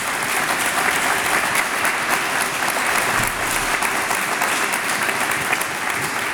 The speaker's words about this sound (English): Thank you for answering those particular questions. I think maybe a round of applause for that honesty there. Thanks.